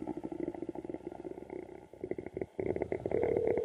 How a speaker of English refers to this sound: All right. My stomach's growling. I'm really hungry.